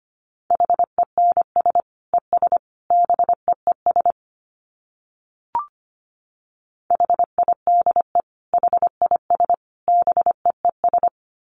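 Morse code at a brisk 25 words per minute: a steady mid-pitched tone keyed into rapid dots and dashes, two bursts separated by a pause with a single short click between them.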